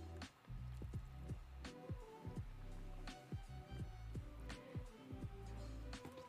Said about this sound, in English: Hydrate, you bastard! Hydrate! Okay, I will drink water in the face hole.